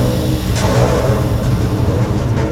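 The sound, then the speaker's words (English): Engines of approaching Cosmic Coalition spaceships roar in a loud, steady rumble, with a deep droning hum and a broad rushing hiss above it, continuous throughout and with no voices. “Can you hear that? More ships are coming after us!”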